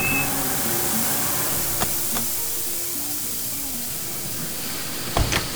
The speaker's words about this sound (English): A panel van with steam belching from its radiator pulls over to the side of the road.